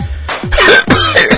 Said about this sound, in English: Well, I got a sore throat and I'm coughing a lot. Pretty sure I got that Zika virus thing that's going around.